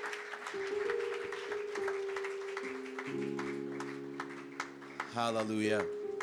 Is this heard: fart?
no